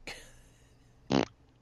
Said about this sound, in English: Blink fart. And I knew the blink fart note was going to come.